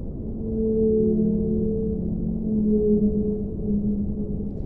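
Long, low tonal moans of whale song drift and overlap underwater in the open sea, picked up by underwater microphones on long cables, sustained and wavering over a steady murky rumble, with no talking.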